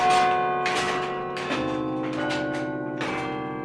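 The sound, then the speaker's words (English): Church bells ring out in overlapping peals, each strike a bright metallic clang followed by long, humming overtones that blend into a continuous resonant wash, with new strikes about every three-quarters of a second. “Obviously, I think bells are important.”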